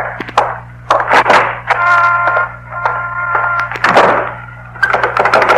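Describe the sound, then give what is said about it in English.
A shop's front door thuds shut, followed by sharp clicks and rattles of its lock being worked, over a steady low hum and a faint tonal drone. “And now the front door.”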